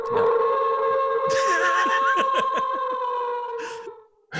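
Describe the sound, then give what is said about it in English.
A sustained, nasal honking tone runs for about four seconds, broken midway by a burst of rapid, chattering squawks that sound like a Canada goose, then fades out abruptly. “Is that a geese sound? Like, is that a Canada Goose sound?”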